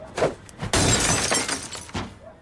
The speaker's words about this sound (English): He broke his own window. I'm howling. Just the way he just doesn't catch it. Boom! Robbie lets that ball go flying past his ear and it smashes the window.